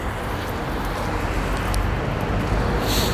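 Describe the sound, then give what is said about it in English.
A steady outdoor wash of street traffic on a dull, windy day, low rumbling and continuous with no distinct pass-bys, mixed with gusty wind noise; no one speaks. “There's some traffic and it's a little windy.”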